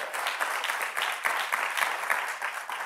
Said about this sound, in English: So I want to ask the room to help me give a big round of applause just to embrace and to acknowledge those that are watching online. Amen.